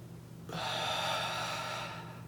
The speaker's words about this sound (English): take a deep breath, but when you do it, imagine your stomach as a balloon, and you breathe in through your nose and allow that balloon or your stomach to inflate, and then you breathe out through your mouth and let it go. So try it with me.